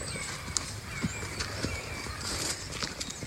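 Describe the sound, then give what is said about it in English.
Horses shuffle about outdoors, their hooves clopping in scattered, irregular knocks over a steady background hiss, with no talking. “I just love watching the horses, you know?”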